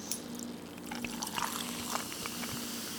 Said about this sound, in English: Colby, you need to practice your soda pouring skills there